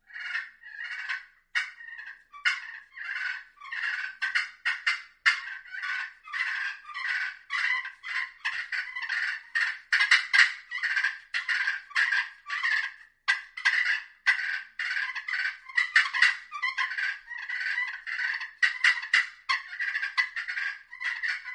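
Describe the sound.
A turkey fighting purr played on two friction calls, the Hooks Exterminator and Hooks Assassin Glass: a rapid, raspy, rolling stream of purrs and sharp clucks that runs without pause for about twenty seconds, fairly loud and with no talking.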